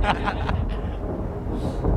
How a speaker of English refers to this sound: Wow. Just when I love when it starts thundering.